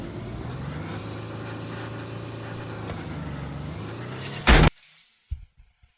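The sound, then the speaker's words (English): A car drives with a steady, droning engine and road noise for several seconds, then a sudden loud burst cuts it off, leaving near silence broken by a few faint thumps. “Every single time we have a clips of the week, as soon as I see a car, I already know what's going to happen.”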